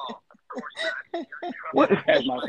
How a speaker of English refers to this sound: That's my son's phone.